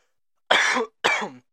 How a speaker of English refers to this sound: Have everybody listen to me cough for a minute while we look up these facts.